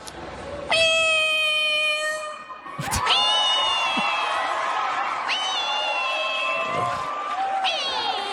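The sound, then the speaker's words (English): At the Miss Universe 2021 pageant hosted by Steve Harvey, a contestant imitates a cat with three long, drawn-out, high-pitched meows, each rising and sustained, while a loud crowd cheers and roars continuously underneath. “Getting a brown girl to meow in front of me?”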